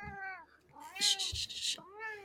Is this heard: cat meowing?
yes